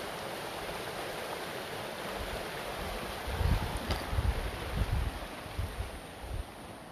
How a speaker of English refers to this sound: Okay, so here we are in the middle of the canyon, down on the banks of the Virgin River